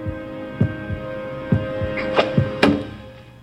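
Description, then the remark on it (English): Deep, heavy heartbeat thumps pound in a slow, uneven rhythm over a steady low electronic hum, with no voices present. “Worf is this heart pounding thing here.”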